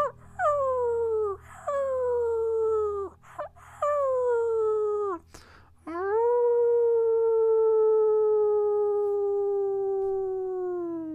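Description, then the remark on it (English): Wolves howl far off in the distance across the land in a series of long, wavering cries that swoop down in pitch, a few overlapping, ending with one drawn-out howl that slowly fades, over a faint low rumble. “And off in the distance, as you continue to howl, you can hear even more howls off in the distance, far away from other wolves across the land.”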